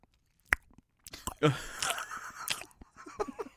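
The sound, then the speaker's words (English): Wet chewing and swallowing noises with irregular crunchy clicks and squelches, heard on their own without talking, the mouth sounds busy and prominent for a few seconds. “It's like a fucking waterfall in your throat. It's so loud.”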